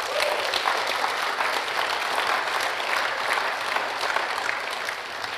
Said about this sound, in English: I just want to say thank you again to Ultimate. So that's for Ultimate Music. Round of applause, guys.